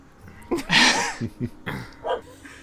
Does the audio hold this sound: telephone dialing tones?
no